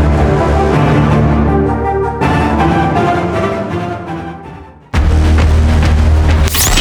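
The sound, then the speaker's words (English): Loud, heavy castle defense cannon fire booms as the cannon fires live shots, blending into a dense, sustained rumble that breaks off abruptly twice before a fresh barrage starts, with no voices. “They hear the castle defense cannon firing live shots.”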